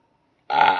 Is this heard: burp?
yes